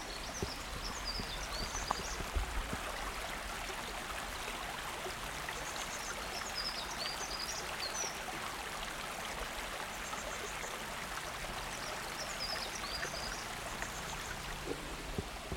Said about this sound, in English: I hope that sounded like a beautiful sparkling little river, sparkling in the sunlight, absolutely gorgeous.